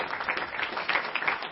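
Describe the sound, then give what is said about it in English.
A crowd at Community Baptist Church applauds everyone who worked on the fall festival and community events, with steady, dense clapping, a continuous crackle of many hands at an even loudness throughout, with no speech over it. “I think all of you deserve a big hand of applause.”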